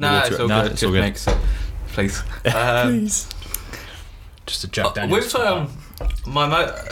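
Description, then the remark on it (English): Liquid is poured into a glass, a brief splashing trickle heard between stretches of conversation that mostly covers it. “Do you want some of that poured out there?”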